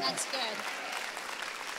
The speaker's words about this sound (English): And if you believe it, clap your hands and give him praise.